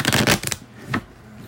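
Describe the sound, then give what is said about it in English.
A deck of cards riffle-shuffled: a quick, crisp rattling flutter lasting about half a second, followed by a brief soft snap as the cards settle. “I'm gonna have to shuffle it to cancel out your energy, and we're gonna do it right.”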